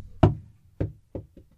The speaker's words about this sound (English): This causes the door to stick in the frame. What do I do about that? Hit door! Kick door! Throw the goddamn apple at the goddamn door!